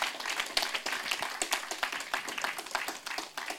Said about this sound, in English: Man, that's powerful. You can applaud that, church. You can applaud that.